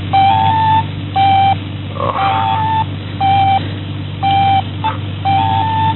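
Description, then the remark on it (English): A radio time signal marking 3 o'clock Eastern Time, played from the end of a tape: five steady electronic beeps at an even pace, each about half a second long, over a low background hum with a slightly muffled, broadcast-like tone. “ABC Radio 1, Eastern Time, 3 o'clock.”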